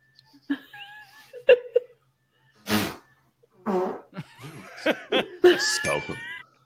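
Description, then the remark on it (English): A voice blows several short, sputtering bursts in imitation of a fart, with one longer raspy burst in the middle, mixed with brief vocal squeaks and noises, moderately loud. “Hey baby. Guess my fart.”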